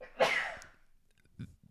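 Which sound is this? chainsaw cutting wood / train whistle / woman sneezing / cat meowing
woman sneezing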